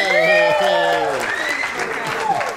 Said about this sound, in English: Singing and clapping.